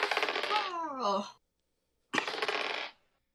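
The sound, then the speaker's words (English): Two bursts of many dice being rolled together, clattering and tumbling in a dense rattling cascade lasting about a second each, separated by a brief silence, loud. “Oh my god, that's so many dice.”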